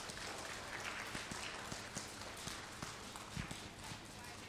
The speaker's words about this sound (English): Let's give those students a round of applause, please.